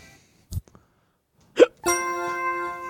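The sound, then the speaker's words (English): A person's sudden, sharp hiccup pops out after a soft earlier catch in the throat, during a group prayer said one word at a time, followed by a steady, tonal voiced sound that lingers to the end. “That was mine, the hiccup.”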